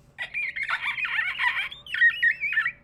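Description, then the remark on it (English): A person imitates a dolphin with a loud, high-pitched chattering squeal. It runs for about two seconds, pauses briefly, then ends in a few wavering whistle-like squeaks, with no talking. “give us a dolphin yeah, give noise.”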